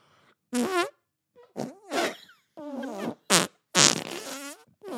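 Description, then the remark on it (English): A person blows a series of buzzy, wobbling fart noises against their forearm with a little saliva and a good seal, about five short bursts in quick succession, fairly loud, with no talking. “into my arm, I would make these fart noises.”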